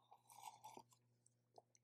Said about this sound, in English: First, a sip of coffee.